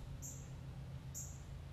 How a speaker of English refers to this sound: Gosh, these birds are really loud today.